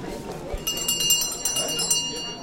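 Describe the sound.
A last-call bell rings rapidly and repeatedly, bright metallic clangs blending into a sustained shimmer for about two seconds, with murmuring voices underneath.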